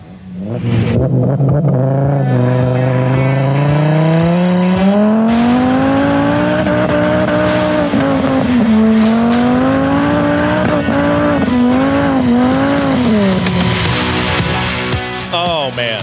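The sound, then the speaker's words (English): A five-cylinder Rabbit car, racing at a rallycross event at Pikes Peak International Raceway, revs hard and climbs steadily in pitch through the gears, loud, with a throaty harmonic drone and brief shifts, no talking. “Those car sounds came in courtesy of Jacob. That is his, wait for it, 5-cylinder Rabbit.”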